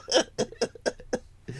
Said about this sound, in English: A side effect is coughing.